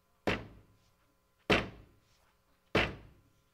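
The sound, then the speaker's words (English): Three heavy, evenly spaced blows of a hammer striking wood during a stage play with the lights down, each a sharp, solid thud that quickly decays, with brief quiet between strikes and no voices. “And about that time in the play, the lights normally would go down dark, and all you would hear is a hammer hitting wood.”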